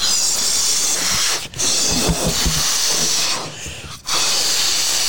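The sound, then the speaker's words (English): Balloons being inflated with a loud, steady hiss of rushing air that cuts out briefly twice before starting again, with faint low thumps and rustling underneath. “So that would be intense getting Nerf blasted while having to look at the screen and blowing up the balloons.”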